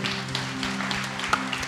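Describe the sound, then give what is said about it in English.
An audience applauding, a steady wash of many hands clapping at once with a few sharper individual claps standing out, over a low steady hum. “Come on, can we round of applause today?”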